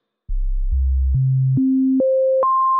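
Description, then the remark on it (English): A pure, smooth synthesizer sine tone climbs upward in six even steps, each note held about half a second, starting very low and ending high, loud and steady with no voices; a basic sine waveform produced by a synthesizer oscillator. “Sine waves.”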